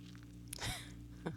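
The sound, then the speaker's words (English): A quiet, breathy slurp of someone sipping a drink, followed by a brief soft gulp a moment later, over a low steady background hum. No one speaks. “So, sorry, I had to take a sip.”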